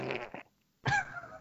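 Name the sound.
fart noise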